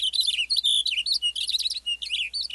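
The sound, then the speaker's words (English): A Cassin's finch sings a rapid, run-on warble of bright, high notes tumbling almost without pause, clear over quiet background, in an open western pine landscape with grass and wildflowers. “A western bluebird flits from a gnarly branch as a Cassin's finch belts out a rapid song.”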